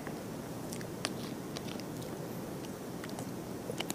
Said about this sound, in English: Sorry, let me grab a sip of water real fast.